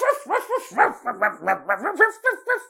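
Two dogs barking loudly and rapidly inside a house in the middle of the night in Santa Isabel, Brazil, a quick string of about a dozen sharp, yappy barks in steady succession, with no talking.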